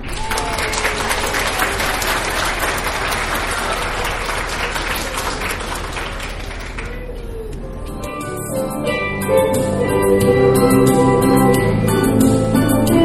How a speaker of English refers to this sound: Now please sit back, relax, and enjoy as our talented performers proudly present Hans Christian Andersen's The Little Mermaid. Let's open them off with a big round of applause.